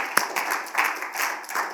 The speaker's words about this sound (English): Can we give him a hand clap one more time? Thank you, Jesus.